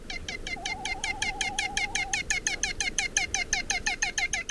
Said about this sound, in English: One of the most distinctive birds in the skies above Hawaii is the iwa, or great frigate bird. Dark black and a bit ominous looking, they have a distinctive bent wing silhouette when in flight, with long pointed wings, a long hooked bill,